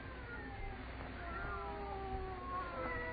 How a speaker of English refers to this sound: They're not ordinary cats. Listen to them.